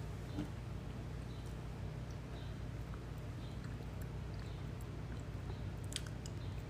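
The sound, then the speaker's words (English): Someone drinks water, with quiet wet sips and gulps and small mouth clicks over a steady low background hum; no one speaks. “I was drinking some water and thinking at the same time, reading your question.”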